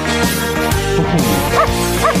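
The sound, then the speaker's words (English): A dog named Molly yips and bow-wows in a string of quick vocal bursts, some rising into whiny, sing-song howls over a steady musical backing, performing doggy karaoke on a stage. “Karaoke for your dog.”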